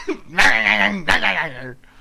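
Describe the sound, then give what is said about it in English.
A person imitates a dog with two drawn-out, howling barks in quick succession, loud, the second slightly shorter than the first. “And he starts barking, and he's like, oh, my God. My kid's a dog.”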